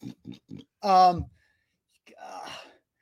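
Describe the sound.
A person imitates a pig: three quick, low grunting oinks, then a loud drawn-out squeal that drops in pitch, and after a short pause a breathy, raspy snort.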